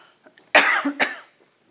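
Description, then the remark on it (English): A loud cough in two harsh bursts, the second shorter, with a brief throaty catch between them, then quiet. No one speaks. “will you bring me a cough lozenge that's right there on my pew?”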